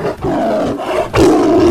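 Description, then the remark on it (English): A saber-toothed tiger, Zabu, roars loudly, a deep growling bellow that breaks briefly before a second, even more forceful roar surges in and holds. “Yeah, I mean, we're going to say no to what the saber-toothed tiger brought us?”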